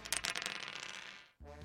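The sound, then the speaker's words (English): Dice are rolled to determine a player's handicap in a game, rattling and clattering across a surface in a quick burst of overlapping clicks that fade out and land on seven, followed by a brief pause before a voice starts speaking. “All right, Mr. Pinkman, roll those dice, will you?”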